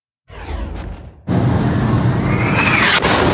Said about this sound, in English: This is the explosion that has shaken the Middle East. New video shows that deadly explosion at a hospital in Gaza City that reportedly killed hundreds and sparked protests from Iran to Yemen to Lebanon